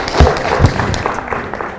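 A crowd gives a round of applause, steady dense clapping that stays loud throughout, with a couple of low thumps early on and faint voices mixed in.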